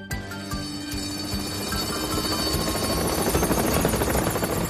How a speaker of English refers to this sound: It wasn't long before the Duke and Duchess heard the sound of Harold the helicopter. Oh, my! Harold landed on the road next to Bertie. Hop on, your graces! I'll get you to Callan Castle! Harold lifted into the air, carrying the Duke and Duchess.